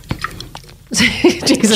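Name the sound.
sipping coffee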